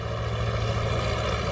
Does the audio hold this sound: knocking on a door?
no